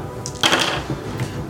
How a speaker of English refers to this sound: Rolling dice. I decided to use a different probability curve.